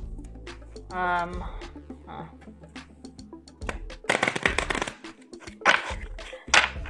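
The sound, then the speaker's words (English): A Nature Spirit deck of oracle cards is shuffled: a dense, papery riffling burst, followed by a few shorter flicks and snaps of cards. A brief hum-like tone comes before it. “So I grabbed the Nature Spirit deck. I'm just gonna shuffle this really quick.”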